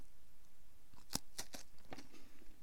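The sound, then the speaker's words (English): A crisp, crunchy bite into a washed-rind cheese being tasted, followed by a few sharp cracking crunches as it's chewed, each one a bright, brief snap over a quiet background. “What a crunch.”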